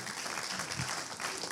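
Soft, steady applause from an audience, a polite golf clap of many hands patting lightly together at a low, even level for a second or two, with no voices over it.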